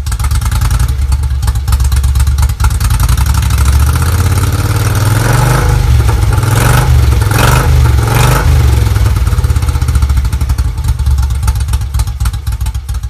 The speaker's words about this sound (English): My garage sale Guzzi is my favorite bike. It's a blast to ride and it sounds like a diesel truck